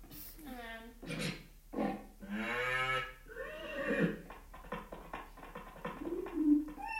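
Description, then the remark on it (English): A person imitates pigeon cooing with a series of low, throaty, warbling coos, followed by softer breathy vocal sounds. “Pigeon. The pigeon is the best.”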